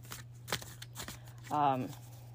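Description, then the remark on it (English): Tarot cards being shuffled for a three-card pull, a few quick papery riffles and slaps, with a low steady hum underneath and a short vocal sound near the end. “You're gonna hear me shuffling.”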